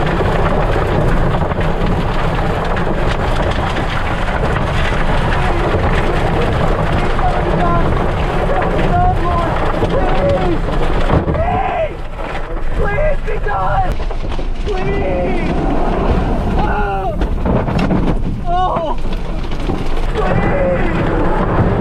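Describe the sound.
Tornado winds batter a car as it starts to move, a loud, unbroken roar with rain-like hiss and low rumbling, while indistinct voices cry out over the din in the second half.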